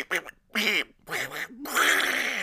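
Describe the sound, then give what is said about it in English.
A voice imitates Donald Duck, letting out several squawky, raspy quacks in quick bursts, fairly loud, ending in a longer garbled quacking stretch. “What do you got, a Donald Duck?”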